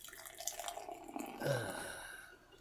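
Lime Pilsner beer from You Into Brewing, a pilsner with lime juice at 5% alcohol by volume, is poured into a glass from a just-opened container: a steady splashing, gurgling stream that swells midway and then tapers off over a couple of seconds, with no one talking.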